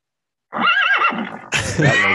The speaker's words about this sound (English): I'm sorry. The world, this show is just an accidentally pressed horse sound effect. The whole show.